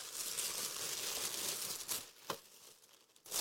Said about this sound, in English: Nothing in there. Something in here. Whoever wrapped this likes tissue paper.